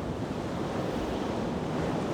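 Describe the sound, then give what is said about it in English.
Storm wind roars over crashing waves in a dense, steady rush of noise that stays loud and even throughout, with no voices present. “She leaves and goes to the pub on the end of the street, as she knows she will not make it in time to go home, and the storm is now getting worse.”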